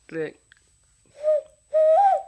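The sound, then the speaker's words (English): A short vocal sound, then two breathy, hooting whistles, the second longer and rising slightly, made by blowing into cupped hands to imitate a bird call. Clear. “It's imitating a bird sound, actually.”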